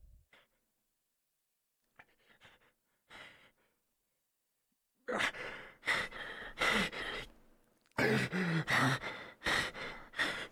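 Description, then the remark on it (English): Staggered, labored breathing of the character Leoric, buried in snow after being hit by an avalanche and barely alive: a few faint, broken breaths at first, then loud, heavy gasping breaths in uneven bursts, with no talking. “We hear the staggered breaths of Leoric.”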